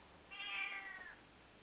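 A single drawn-out meow from a female cat, rising and then trailing off, at modest volume against a quiet background hiss.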